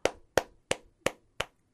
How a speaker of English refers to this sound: That was my little clap there for them.